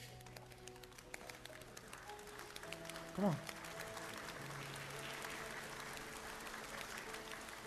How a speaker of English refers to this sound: He says, all right, here's the first thing I need. I need you to clap softly.